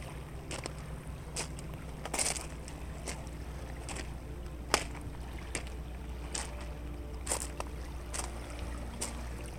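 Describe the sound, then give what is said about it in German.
Water surges and splashes against rocks in irregular bursts over a steady low rumble, with a few sharper slaps standing out and no voices. “Die Wellen brechen sich weiter an den Felsen, auf denen du wanderst.”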